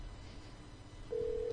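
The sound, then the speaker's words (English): Over a quiet hiss of line noise, the steady ringback tone of an outgoing phone call starts partway through, a single clear, fairly loud hum that runs to the end. “It's ringing. It's a good sign.”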